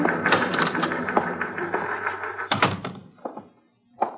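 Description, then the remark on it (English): A typewriter clatters with rapid, steady keystrokes for about three seconds as a stenographer types a statement, then slows to a few separate heavy clacks with short pauses between. The typing is fairly loud, with no voices. “It was 12 noon when the stenographer completed typing the statement, and I took it into Walker to sign.”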